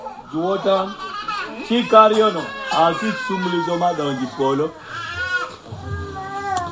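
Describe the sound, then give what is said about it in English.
A small child cries during a church sermon in a run of wavering, high-pitched wails and whimpers, fairly loud and nearly continuous, easing into softer sobbing sounds toward the end. “So, I mean no disrespect, but if a child starts to cry, please step out so everyone else can hear the message, okay?”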